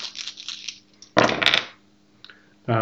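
A quick clatter of four dice rattling and tumbling across a hard surface in a Vampire: The Masquerade tabletop game roll, fairly loud, in two bursts of rattling with a short pause between, followed by the start of a voice.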